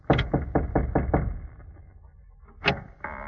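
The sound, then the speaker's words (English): A quick series of about six sharp knocks on a wooden door, fairly loud, followed by a brief pause and a single further thud. “Well, here's the door. Knock.”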